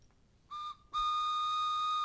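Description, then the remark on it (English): A loud train whistle blows twice: a short blast, then a long, steady one that holds on without fading. Its tone is bright and chord-like, with several high pitches sounding together. “I love running into stuff doing podcasts. Normally, it's talking about the sports, but look at this. It's a train pod.”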